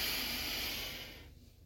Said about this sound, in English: And we're breathing it all in and out, in and out and in and out.